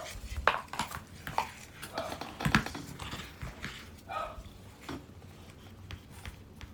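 A dog named Mojo barks several times in irregular, sharp bursts, with a few quieter yips and some faint background clatter between them.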